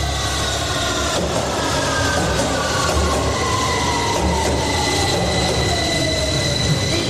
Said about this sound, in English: It's Sloan Square. This is a District Line train to Upminster.